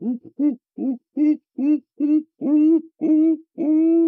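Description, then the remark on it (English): A voice imitates monkey calls with a series of about nine hooting, rising whoops, starting short and choppy and growing longer and louder toward the end, clear. “They heard other things like monkeys.”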